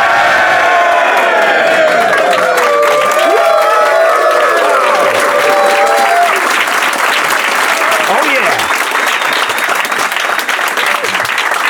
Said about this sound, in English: What a crowd. You guys turned the lights on. Look, wow, they're even cheering down the hall for us. I think that was an echo, actually. It's great to be here in Oslo at NDC, and what a great audience this is.